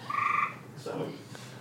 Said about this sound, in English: Is he stuck in your window? Is it a frog? Remember it was a frog out there the other day. Might be a frog. It might be a frog, bro.